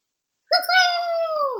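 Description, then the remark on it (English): A person imitates an owl screeching quietly: one drawn-out, high, nasal wail that starts abruptly after a brief silence, holds steady for about a second, and sags slightly in pitch at the end. “And he, what do owls do? Bird sound. I guess they screech. So he screeches quietly.”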